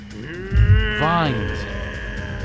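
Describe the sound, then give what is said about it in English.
The Shogun, a monster, lets out a loud, monstrous roaring scream that rises and falls in pitch for about a second, layered over a low rumbling growl, with no talking. “The Shogun lets out a terrifying scream.”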